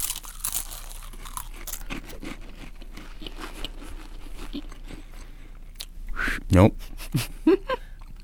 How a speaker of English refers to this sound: Now, your job is to eat the saltine, and then the first one to whistle the Olympic theme or really make any sound at all wins.